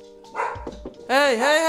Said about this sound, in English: But, oh, the dogs are barking. Yo, pups.